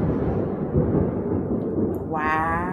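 thunder

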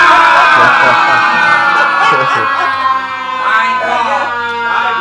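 crowd shouting and cheering

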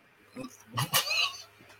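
dogs whimpering

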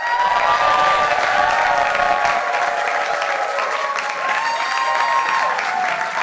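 audience cheering

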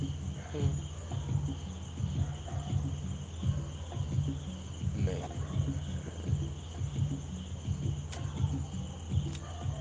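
insects chirping at night

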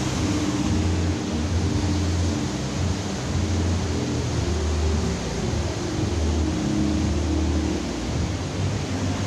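rushing water

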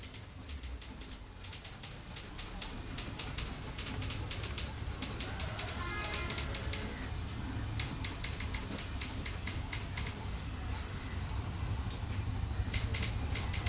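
typewriter typing

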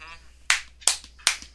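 hands clapping

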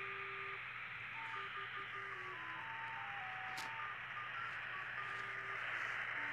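shortwave radio static

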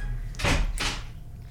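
door opening

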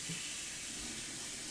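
hot water running

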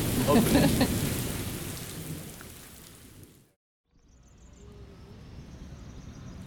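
rain falling

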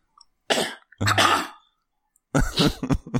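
cough

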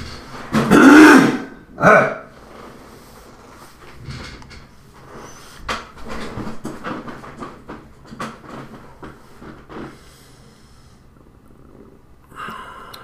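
throat clearing

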